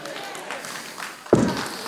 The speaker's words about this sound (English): Stomp my foot.